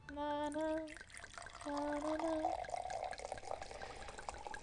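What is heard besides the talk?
champagne being poured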